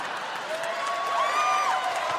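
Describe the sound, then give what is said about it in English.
A crowd of people from Portland applauding as the Carnival cruise ship Destiny hits the rocks off Withered Arm Island in 1996, a steady, dense wash of clapping that holds at an even level throughout, with a thin whistle-like tone gliding through the middle. “All of Portland came out to applaud.”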